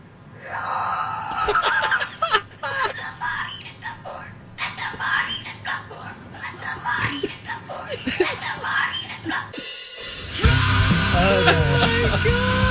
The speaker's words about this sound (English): I just bought a cockatoo from a guy on Craigslist. And it keeps on making these.